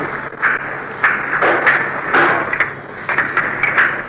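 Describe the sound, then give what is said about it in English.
Hammering from reconstruction work right outside a hotel window in Manila, Philippines, at 6:45 in the morning: irregular, sharp metallic knocks repeating every half second or so, steady in loudness over a continuous background hiss, with no voices. “You're in a hotel in Manila, sleeping at 6:45 in the morning, and suddenly you're awakened by sounds of the reconstruction of the Philippines going on right outside your window.”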